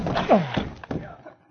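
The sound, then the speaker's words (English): Two heavy, dull thuds of two men slamming their bodies into a solid wooden door barred with a 2x4, with straining grunts of effort between the impacts, then a brief fading rattle. “Again and again, the two men hurled their weight against the door.”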